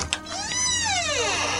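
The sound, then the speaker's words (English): The chamber doors slide open with a couple of quick clicks, then a steady whirring hum whose pitch rises and slowly falls as it moves, ending in a sustained mechanical drone. “Then the doors to the chamber open.”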